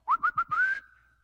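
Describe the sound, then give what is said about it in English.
Someone whistles as if calling a dog: three quick, clear chirps followed by one longer whistle that rises slightly and trails off, fairly loud with no talking. “That literally, it's almost like whistling for your dog.”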